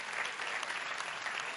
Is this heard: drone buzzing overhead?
no